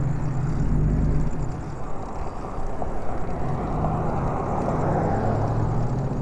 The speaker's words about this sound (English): A lot of traffic now.